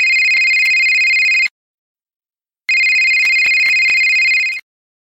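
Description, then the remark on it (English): A loud electronic telephone ring sounds twice, each burst a steady high-pitched tone lasting about a second and a half, separated by a second of silence, with no one speaking. “I still haven't fixed the video, so plug your ears. The ringing will be loud.”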